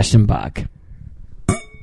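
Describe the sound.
Wine glasses holding 2004 Black Opal Australian Merlot clink together in a toast, a cluster of quick bright taps followed by a single ringing clink that lingers briefly, with brief voices at the start.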